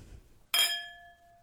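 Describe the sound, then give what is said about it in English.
A single bright clink of wine glasses touching, sharp at the start with a clear ringing tone that lingers and fades over about a second; fairly loud, no voices. “With all that said, here's the clink.”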